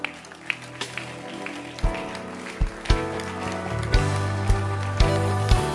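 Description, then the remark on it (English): An audience claps along in a steady rhythm, sharp hand claps landing roughly every half second to second over a sustained, droning musical backdrop. “Keep clapping.”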